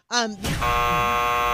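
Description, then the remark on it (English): An extended trivia game timer buzzer sounds loud, a steady sustained electronic drone that cuts in after a brief burst of voice and holds without letting up. “I like these extended timers. I think you extended them out a little bit, didn't you?”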